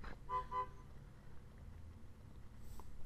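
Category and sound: vehicle, car horn honking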